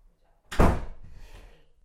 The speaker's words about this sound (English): Close the door.